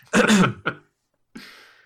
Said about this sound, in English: Excuse me, and clear my throat. There we go.